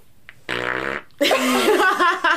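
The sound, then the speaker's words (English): A wet, sputtering fart: a short buzzy blast, a brief pause, then a longer, louder, juicy spluttering stretch, with no talking over it. “That's disgusting. Like my farts last night.”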